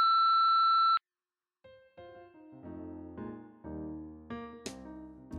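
A single steady electronic beep holds for about a second, then cuts off; after a brief silence, layered melodic music starts and builds.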